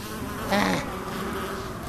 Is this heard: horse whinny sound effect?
no